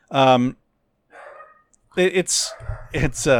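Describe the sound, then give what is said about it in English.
A dog barks in short, sharp bursts: one loud bark, a softer muffled yelp, then a couple more barks overlapping with low rumbling noise. “Dog. Sorry.”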